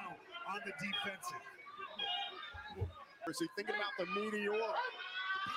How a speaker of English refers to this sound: There's some fucking kids playing in the hallway and ringing my bell. Playing Ding Dong Ditch.